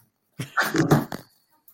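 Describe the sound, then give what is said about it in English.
A dog lets out a single drawn-out bark, fairly loud, followed by near silence with no voices. “We're getting rid of the dogs.”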